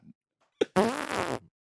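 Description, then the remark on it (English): A short pop, then a loud, wet, buzzing fart noise lasting about half a second, made with hands and lips rather than a real fart. It stands alone, with no talking. “We are all terrible fart noises.”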